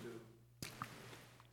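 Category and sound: human body sound, sipping water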